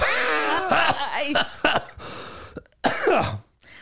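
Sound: cough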